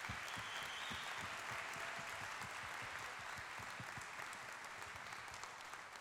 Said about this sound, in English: So I just want to give a big round of applause and thanks to these people who have done so much.